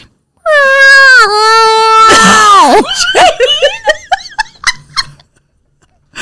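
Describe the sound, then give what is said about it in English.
A voice imitates a foghorn with a long, steady droning tone that breaks into a swooping, wavering wail, then dissolves into choppy, laughter-like vocal bursts before fading out. “That was supposed to be a foghorn.”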